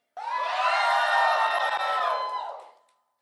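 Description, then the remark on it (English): A large crowd erupts in loud, sustained screaming and cheering, many voices blending into a dense roar that holds for a couple of seconds before fading away. “Somebody scream.”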